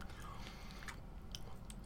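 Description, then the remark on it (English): Chewing of crunchy chips topped with a Chipotle bowl of black beans, steak and corn salsa, with repeated crisp crackles over wet, squishy mouth sounds and no talking. “I'm putting my Chipotle bowl onto chips.”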